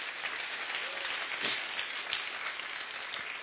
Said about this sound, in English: That's the beauty of this God. Let's clap him. Let's clap for him.